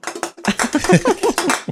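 A rapid run of bright clinks as glasses are tapped together over and over in a toast, about a dozen light, ringing hits in an uneven rhythm, with no talking.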